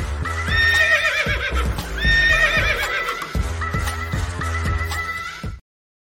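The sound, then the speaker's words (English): A loud horse whinny rings out twice over steady clip-clopping hooves, followed by a softer third neigh before the sound cuts off abruptly; no one speaks. It serves as the sting for a sports show segment called the Deep Dive with the Big Horse. “we've got a little segment called the Deep Dive with the Big Horse, and I'm really looking forward to it tonight.”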